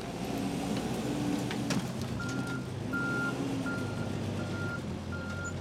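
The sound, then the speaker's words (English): A garbage truck idling in the middle of a street while mattresses, shopping carts and other items are loaded into it; its heavy diesel engine rumbles steadily, and partway through a reversing alarm starts beeping in an even, repeating rhythm over the engine noise. “Q-Ball watched the last of the mattresses, shopping carts, and other items go into the garbage truck idling in the middle of the street”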